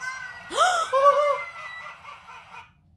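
A talking crow named Joe lets out one short, raspy, voice-like utterance mimicking human speech, rising and then trailing off over a couple of seconds, clear against a quiet background.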